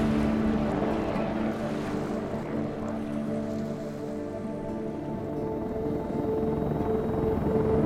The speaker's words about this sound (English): Are we still on... We're still on the helicopter.